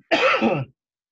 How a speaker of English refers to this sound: But I think that cough helped me transition into the next thing.